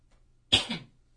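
A single sharp cough from a person with allergies, a brief harsh throaty hack that trails off quickly into quiet.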